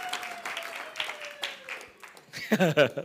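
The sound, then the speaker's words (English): An audience claps their hands in a steady wash of applause, with a faint sustained tone underneath, before a voice begins speaking near the end. “Clap your hands for these ones.”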